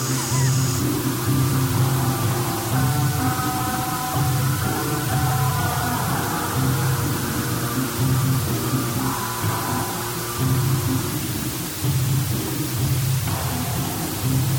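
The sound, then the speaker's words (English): A steady, loud wash of white noise hisses throughout, with faint tonal, music-like notes and a low pulsing hum buried underneath. “Again, mostly white noise.”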